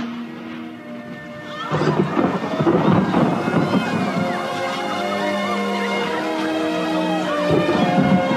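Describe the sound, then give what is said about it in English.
Steady rain hisses and wind blows throughout while deep thunder rumbles in after a quiet start and swells again near the end, a continuous storm with no voices. “The rain came down, the streams rose, and the winds blew and beat against that house, and it fell with a great crash.”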